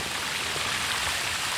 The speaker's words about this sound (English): The pump and everything is in the hole down there, almost 190 feet. Let me get some water running and see if it comes on to you.